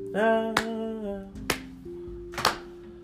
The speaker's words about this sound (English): Why are you clapping your hands? Why?